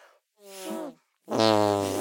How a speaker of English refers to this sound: Okay, now I'm not just taking my top off to show you how beautiful my arm is, but I like to end each show with musical arm farts.